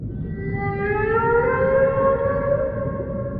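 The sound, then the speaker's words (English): A voice imitates a humpback whale call: one long, steady, siren-like moan that slowly rises in pitch and holds, with rich overtones, over a low background rumble and no talking. “To determine who's going to go first, though, I want each of you to give me your best humpback whale impression.”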